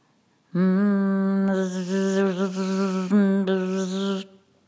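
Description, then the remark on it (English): A bee buzzes loudly in a steady, rich drone lasting nearly four seconds, its pitch wavering slightly as it flies, with no voices present. “Does the bee use harmonics or something called vibrational sympathy, which alters the state of his body through buzzing and allows it to resonate with its surrounding, allowing it to float?”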